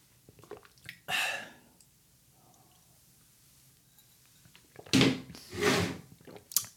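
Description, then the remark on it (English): Slurping sips of cold coffee from a mug: one short sip, a quiet pause with faint shuffling, then two longer, louder slurps in quick succession. No talking. “I'm gonna sip on my cold coffee.”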